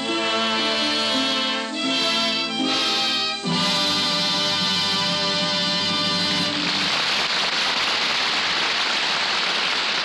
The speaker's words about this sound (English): The music swells, the audience applauds. The curtain slowly falls, bringing our play to its happy conclusion.